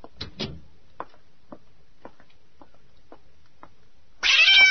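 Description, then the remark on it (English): A cat lets out a loud, sudden meow near the end, following a quiet stretch of soft, evenly spaced taps and a couple of brief thumps at the start. “You like that cat”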